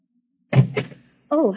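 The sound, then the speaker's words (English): A door opens with two quick wooden clunks of the latch and swing, followed a moment later by a voice starting to speak. “There's someone listening outside the door.”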